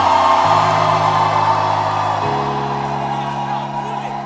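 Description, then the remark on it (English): A crowd in a church shouts and whoops loudly and continuously, a dense wall of voices, over sustained organ chords that shift pitch twice. “Is there anybody here who has not heard a shout like this before in church?”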